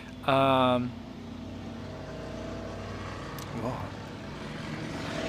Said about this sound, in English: A lot of motorcycles coming through.